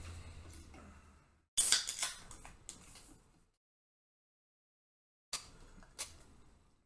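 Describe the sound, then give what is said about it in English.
Free Wave Hazy IPA, a non-alcoholic beer of 0.5% ABV, is poured from a can in two spells: a bright, fizzy hiss with small clinks and splashes, a pause of silence, then a shorter pour. No one speaks. “But let's pour it on up.”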